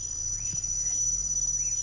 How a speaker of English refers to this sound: That's the African cricket. You can hear that?